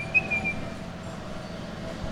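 A 78-year-old man whistles a short, clear rising note near the start while working on a 104-year-old piece of machinery in Prospect Park, Brooklyn, then falls quiet while a steady low mechanical hum and background rumble carry on.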